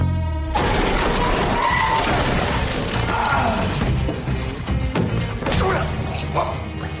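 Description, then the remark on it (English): In a TV clip, Kevin drives a car through a warehouse wall with a sudden loud crash, followed by several seconds of shattering, crunching debris and heavy thuds, sustained. “And just when the two think they're done for, Kevin comes crashing through the wall in the car in this clip.”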